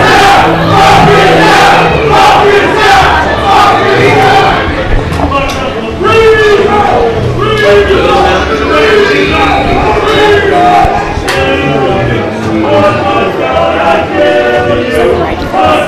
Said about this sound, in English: And this crowd is letting them hear it. They are not approving it.